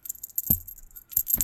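A small jingle bell on a dangly cat toy with little bats rattles in a few quick, bright bursts as the cat Anna bats at it, with soft thumps mixed in. The jingling is fairly quiet.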